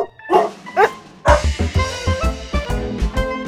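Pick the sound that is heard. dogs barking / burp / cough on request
dogs barking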